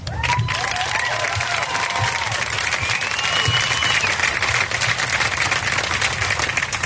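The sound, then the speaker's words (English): A crowd gathered outdoors at one side of a bridge for a unity walk claps steadily and densely throughout after a speaker is introduced, a loud continuous wash of many hands, with a few faint whistles and cheers rising over the applause. “He introduced me, and you clapped.”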